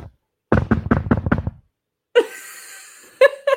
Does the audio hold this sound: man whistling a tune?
no